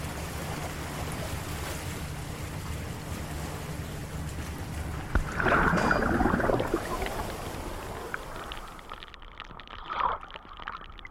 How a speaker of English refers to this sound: Flood the chamber. Confirmed. Rushing water is heard as the airlock chamber floods.